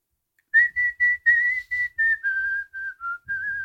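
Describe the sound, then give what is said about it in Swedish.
A person whistles a short melody, clear and loud, with a string of distinct notes that step downward and then rise again at the end, with no talking. “Aldrig hört, men bra på vissla ändå.”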